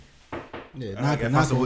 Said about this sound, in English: Knock on wood. Knock on everything.